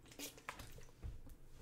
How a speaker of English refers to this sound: I'm just going to get a sip of water here and pull up my scriptures.